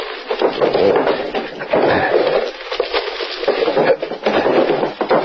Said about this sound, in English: I'll open some of the drawers in this chest.